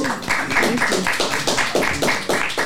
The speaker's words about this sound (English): To this day, we've helped 100,000 people lose 1 million pounds. Wow. Mm-hmm. We can clap that up. That's good.